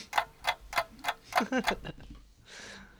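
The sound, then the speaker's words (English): A timer inside a turkey ticks loudly, a steady run of about seven crisp tick-tocks over two seconds, followed by a brief soft hiss. “I swear, it's ticking.”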